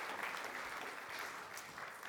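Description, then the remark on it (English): An audience claps steadily, a dense, even wash of many hands applauding at a constant moderate level for about two seconds, with no voices standing out. “Give her a round of applause, joining in and helping me like that.”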